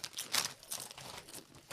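A crisp packet of about 700 calories being opened to eat, with irregular bursts of crackly, high-pitched crinkling over a couple of seconds, fairly quiet and with no voices.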